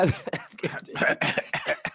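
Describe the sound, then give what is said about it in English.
A loud bout of coughing: a rapid string of harsh, hacking coughs, roughly eight bursts in two seconds with brief breaths between them, and no talking. “You know, this will be quite the podcast when we're both coughing simultaneously.”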